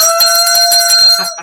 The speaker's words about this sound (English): I have my famous bell.